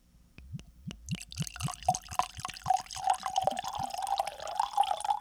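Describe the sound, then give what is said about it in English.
Whiskey pours into a glass, starting with a few quick glugs and then a steady stream whose pitch rises as the glass fills. No one speaks. “That's a healthy pour right there.”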